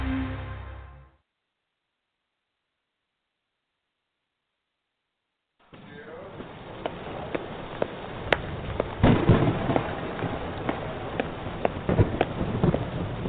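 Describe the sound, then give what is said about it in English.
After a brief sound and a few seconds of silence, a steady, dense roar of noise begins, broken by repeated sharp cracks and bursts like a thunderstorm. No one speaks. “Oh, listen to the thunder, huh?”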